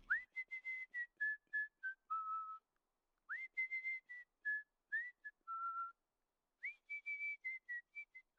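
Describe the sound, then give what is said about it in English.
A village postman cycling along whistles a bright, bouncy tune in three short phrases, each sliding up into a string of clipped, stepping notes, clear with brief pauses between. “Presently, the dolly saw the village postman cycling along in the direction of Daisyfield, whistling cheerfully.”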